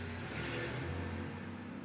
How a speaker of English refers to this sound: Goodbye, UPS truck.